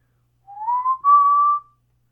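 A person whistles a short improvised tune, a rising note sliding into a steady held pitch, lasting just over a second with no talking.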